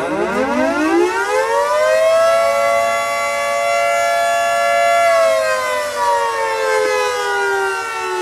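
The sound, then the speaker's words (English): A tornado siren sounds across the town, wailing steadily, its tone rising at the start, holding long and high, then slowly sliding down, loud and sustained with no voices over it. “Yes, our tornado sirens are going off.”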